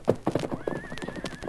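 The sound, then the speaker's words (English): A horse named Silver, the Lone Ranger's horse, whinnies with a high, wavering cry while its hooves clip-clop in a quick, steady rhythm, clear, with no one speaking. “Mercer, you heard what he called that horse?”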